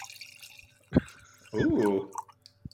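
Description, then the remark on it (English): A short pour of whiskey into a glass, with faint drips and a single sharp clink near the start, followed by a brief vocal exclamation. “Moment of silence as I make another pour here.”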